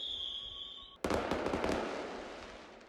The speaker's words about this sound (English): I'm imagining it's sort of like one of those reality programs, and it says, and the winner of the dispute between the Hanseatic League and Norway is the Hanseatic League, and then fireworks go off and stuff.